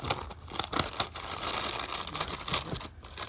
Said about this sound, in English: First, Starburst, here's the first gift. Unwrap it.